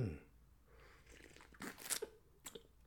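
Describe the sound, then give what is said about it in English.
Wet slurping sounds from someone sipping hot coffee early in the morning, coming in a few short noisy bursts with quiet pauses between them and no talking. “Sorry, folks, to be slurping and slapping down this coffee, but it is like 6:45 in the morning, for crying out loud, you know?”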